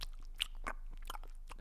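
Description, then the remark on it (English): Wet chewing of a chewy mint, with a few sticky smacking and clicking bursts in an irregular rhythm, loud, with no talking. “I was chewing on like a chewy mint before, so I thought it'd be a fun way to open the show.”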